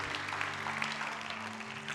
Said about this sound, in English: Would you give the Lord a clap offering? Would you do that?